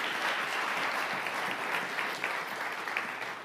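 A crowd claps steadily, many hands blending into a dense, continuous wash of applause that holds at an even level throughout without any voices rising above it.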